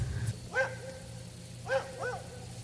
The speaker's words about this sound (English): Can you hear the dogs? I'm really kind of scared right now. Don't worry. We'll throw something at them.